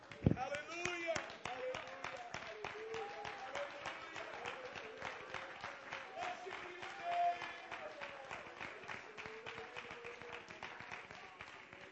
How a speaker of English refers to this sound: Clap your hands as you're being seated and give the Lord praise one more time.